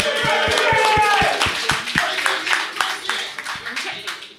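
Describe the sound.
A crowd at a live show bursts into loud applause, brisk overlapping claps with a few cheering voices at the start, then the clapping thins into scattered individual claps as it fades.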